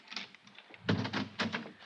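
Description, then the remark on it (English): An office door opens: a soft handling rattle, then a sharp latch clack and a scraping swing, heard alone without any voices. “I leveled the gun on the door.”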